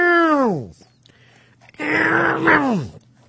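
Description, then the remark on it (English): A voice makes exaggerated fake crying sounds: a falling, harmonic wail, a short pause, then a longer strained sob-like moan that drops in pitch at the end. “Just crying noises.”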